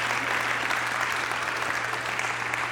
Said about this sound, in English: All she has to do is exist to get applause.